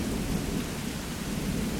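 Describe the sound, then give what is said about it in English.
A low, steady rumble of distant thunder during a storm, with lightning flashing in the distance, rolls beneath a constant wash of rain, with no voices, filling the whole stretch at a moderate, even loudness. “Except when the lightning flashes in the distance”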